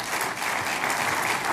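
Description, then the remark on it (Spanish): A church audience breaks into steady applause for the Lord during a sermon, a dense, continuous wash of many hands clapping at even loudness throughout, with no voices standing out. “Si puede darle un aplauso al Señor, ¿no?”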